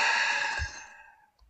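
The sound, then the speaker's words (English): A long, airy exhale breathed out through the mouth after a breath in through the nose, during a guided deep-breathing exercise. It is loud at first and then softens as it trails away over about a second, with no talking. “We're going to breathe in through our nose and out through our mouth.”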